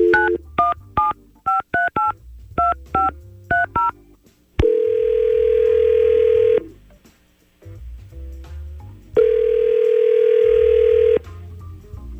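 A rapid series of touch-tone beeps as a phone number is dialed to call a man, followed by two long, steady ringback tones separated by a pause, heard clearly with no talking.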